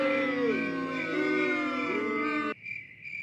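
A crickets sound effect with a steady, high chirping trill. For the first two and a half seconds it runs under a loud, droning, wavering harmonic sound, which cuts off abruptly and leaves the chirps alone.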